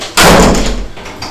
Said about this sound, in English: Shall I just shut this door? Yeah, just put it to...